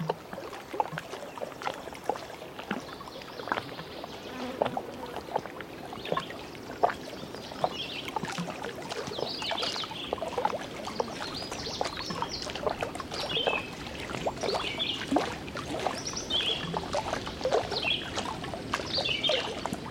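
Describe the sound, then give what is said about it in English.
Small waves lap and splash gently against the shore of a small bay in a steady, irregular rhythm, fairly quiet, with birds chirping in the background. “The waves sound slightly different here, but just as unique.”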